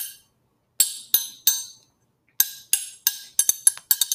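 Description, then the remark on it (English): A metal triangle is struck repeatedly, first three evenly spaced rings, then a quicker series of bright, shimmering hits with short decays, clear with no talking. “That's my triangle.”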